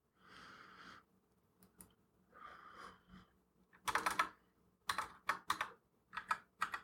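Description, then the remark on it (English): Crisp computer keyboard typing in irregular bursts of sharp clicks, coming after a couple of soft breathy rustles; no one speaks. “Sorry, this is what I get for typing it with”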